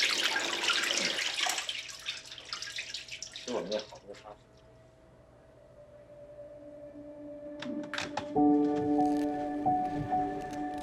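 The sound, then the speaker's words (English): Wet splashing and trickling as water drains through a papermaking mesh holding pulp, gently shaken by hand to leave a thin layer of pulp, loud for a few seconds, then fading to quiet drips before voices and clatter take over. “With some gentle shakes of hands, a thin layer of pulp is left on the mesh.”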